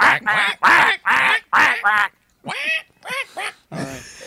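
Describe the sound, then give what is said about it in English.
A person imitates a duck, giving a rapid run of five nasal quacks, then a short pause and three or four more squawky quacks, loud. “Quack, quack, quack, quack.”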